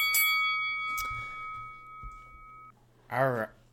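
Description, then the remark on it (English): A single bright bell ding rings out clear, its shimmering tone lingering for a couple of seconds before cutting off, followed by a brief burst of someone speaking. “We got to get a bell every time here.”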